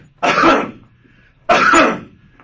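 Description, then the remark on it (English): Two forceful, deliberate coughs, each a loud harsh burst with a raspy throat-clearing quality, spaced about a second apart, with no talking, as a person demonstrates a good hard cough. “So now, let's say what a good hard cough would do.”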